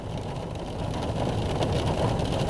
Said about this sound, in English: if you can hear that, it sounds like rain.